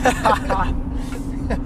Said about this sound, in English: we're recording this in the car.